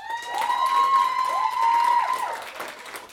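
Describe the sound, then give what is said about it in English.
An audience claps and cheers for about three seconds, applauding to show who hates pineapple on pizza, with a loud, sustained whistle ringing out over the applause for most of it before the clapping tapers off. “I want to hear by a round of applause. Who here hates pineapple and pizza?”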